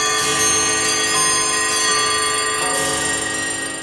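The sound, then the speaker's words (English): A dense clamor of many clocks, set up to ring at the same time and recorded together, ringing and chiming with bright overlapping bells and tones sustained loudly throughout, with no voices. “Like, they had to set up all those clocks to ring at the same time.”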